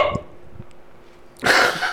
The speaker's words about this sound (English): Someone recently commented that it burped into the mic too much. There was a fucking echo to that one. So I'm making it a point to burp into the mic tonight.